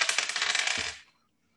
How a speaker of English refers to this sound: You see, all right, see this right here? This is a D20. 20-sided dice. If I roll an even number, mm-hmm. I'm back in the Tigers.